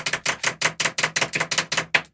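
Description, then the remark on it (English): A quick, steady run of about ten sharp taps, two pens drumming on a hard surface in a makeshift drum roll, clear with no talking, ending abruptly after two seconds. “I want a drum roll. Can we make a drum roll? Yeah. I've only got two pens.”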